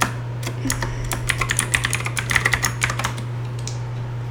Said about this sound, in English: Sorry for my keyboard. Just... Tippity taps. Tippity types.